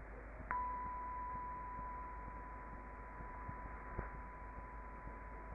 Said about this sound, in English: Or the sound of a bell.